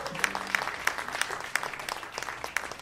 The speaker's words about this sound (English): Ladies and gentlemen, I was just going to say, how about another round of applause for our contestants and celebrity impressions on the spot?